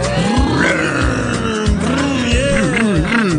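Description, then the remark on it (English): A group of voices imitates a roaring car engine after pretending to turn a key to start it, during a sing-along song about riding in a car. The sound is a loud, continuous growling rumble whose low pitch wobbles and surges throughout, with no ordinary speech. “Now let me hear you make that engine roar.”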